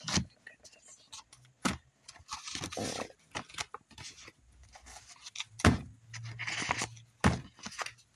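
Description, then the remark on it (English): A big deck of oracle cards being shuffled: uneven bursts of papery riffling and scraping, punctuated by several sharp slaps and taps, with brief pauses between handfuls. “So I will struggle through this. Shuffle, if that's what you want to call it.”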